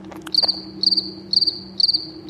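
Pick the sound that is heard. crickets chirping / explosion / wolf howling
crickets chirping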